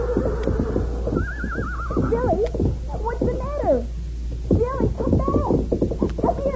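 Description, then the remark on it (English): A horse, Billy, frightened by a reptile in a grove at the top of a slope, squeals and snorts in a rapid series of shrill, wavering cries, loud, with a steady low rumble running underneath throughout. “Her horse moved back through the grove, nibbling at the undergrowth. Suddenly, she heard a snort and squeal.”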